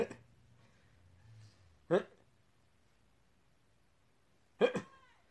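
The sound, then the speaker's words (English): A cat meows in short, sharp bursts, three calls spaced a couple of seconds apart, fairly loud against a low hum. “Oh my God, get here, this cat.”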